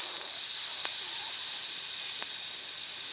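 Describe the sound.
A voice imitates a snake, producing one long, steady, loud hiss that runs unbroken for about three seconds, bright and airy, with no speech.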